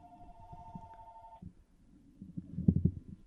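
telephone ringing

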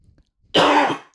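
coughing and throat clearing

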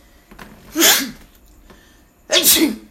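sneeze

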